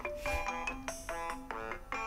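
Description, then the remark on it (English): A phone ringtone plays a bright, repeating melodic pattern of short tonal notes with a steady rhythm, clear, with no voices over it. “Gosh, that is a ringtone, isn't it?”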